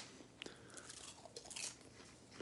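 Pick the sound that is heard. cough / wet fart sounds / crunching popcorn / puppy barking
crunching popcorn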